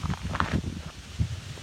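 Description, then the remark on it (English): A short gust of wind buffets the microphone, a low rumbling roar with a few rustling bursts, steady for under two seconds with no talking. “We have a gust of air here.”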